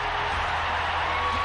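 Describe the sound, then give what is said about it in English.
A capacity crowd at an Olympic hockey game at the 13th Winter Olympics, just after the United States has beaten the Soviet Union, roars in a dense, unbroken wall of cheering, loud and steady throughout, with no single voice standing out. “Listen to this crowd. This capacity crowd has been the most exciting event here at the 13th Winter Olympics.”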